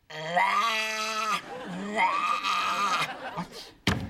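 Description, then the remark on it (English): A person imitates the noise their dog keeps making, with two long, wavering, high-pitched vocal cries, loud and whiny, followed by a brief sharp thump at the end. “So my dog keeps going...”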